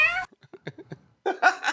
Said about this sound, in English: What was that? It was a cat.